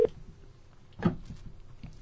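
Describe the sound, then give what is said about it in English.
A faint, steady ringback tone hums through the line of an outgoing phone call, with a couple of brief soft clicks or bumps over it and no voices. “Well, it's ringing.”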